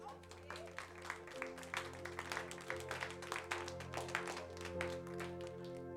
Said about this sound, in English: Clap for the Lord Jesus.